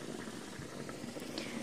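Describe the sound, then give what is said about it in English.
A facial steamer gives a steady, hissing rush of steam with a soft bubbling undertone, continuous and even throughout with no voices. “I'm going to hold steam.”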